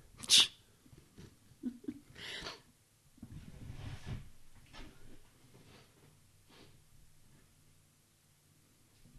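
A sharp, loud sneeze bursts out at the start, followed by a few quieter sniffs and breathy nasal sounds, then low mumbled voices and soft rustling.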